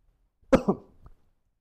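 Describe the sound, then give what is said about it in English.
A single sharp cough with a quick double burst, followed by a faint throaty rasp, isolated against silence. “I'm getting so excited about it that made me cough.”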